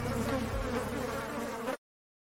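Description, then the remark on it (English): A steady insect buzz sound effect like a bee or wasp hums loudly and continuously for under two seconds, then cuts off abruptly into silence. “Now time for the things that sting, the worst stories in sports”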